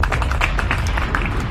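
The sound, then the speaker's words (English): A quick, uneven run of hand claps, about a dozen crisp slaps in a second and a half, over a steady low rumble with no talking. “That's a real claps.”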